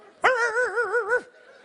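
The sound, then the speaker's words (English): An audience imitates barking dogs: a single wavering, howl-like "woo" lasting about a second, loud, with a pulsing tremble in the pitch before it cuts off. “Some of you sound more like cats than you do dogs.”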